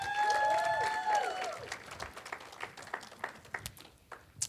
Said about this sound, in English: Can we give them a hand clap of appreciation?